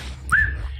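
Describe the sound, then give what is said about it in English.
A person gives one quick, sharp whistle to call a waiter, sliding upward and holding briefly, loud, over a low, steady background rumble. “Or a whistle.”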